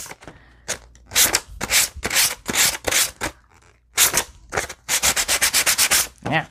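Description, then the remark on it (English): Rough, raspy strokes of the rough side of a coarse file sanding against a surface, about a dozen broad scratchy passes that speed up into a quick run of short, rhythmic strokes near the end. No one speaks. “I guess a little faster if you use the rough side.”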